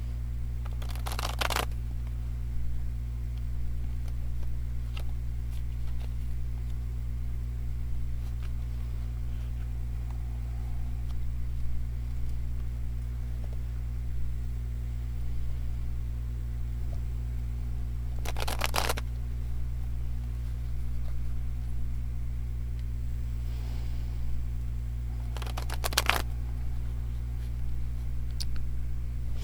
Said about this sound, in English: During the first shuffle, the cards were really sticking. It was unusual, and a card flipped over, which was the Hermit.